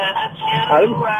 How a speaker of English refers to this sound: Ringtone on my phone.